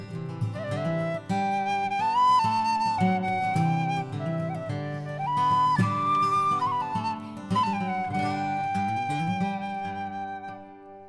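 Acoustic guitar strums steadily beneath a bright, wavering tin whistle melody, the tune flowing at a moderate tempo and fairly loud throughout, with no voices.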